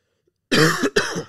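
Two harsh, loud coughs in quick succession after a moment of silence, the second rougher and ending in a raspy throat clear, with no talking.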